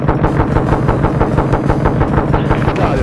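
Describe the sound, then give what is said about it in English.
Rapid, sustained machine gun fire from a video game, fired at an enemy bogey, a steady stream of loud, evenly spaced bursts with a heavy low rumble running under the crackling shots. “I got another bogey I'm taking out with my machine guns.”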